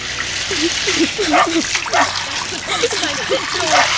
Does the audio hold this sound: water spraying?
yes